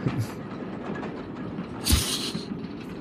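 A steady, rumbling rattle of a train rolling along the tracks, with low clattering and a brief hissing swell partway through, no voices.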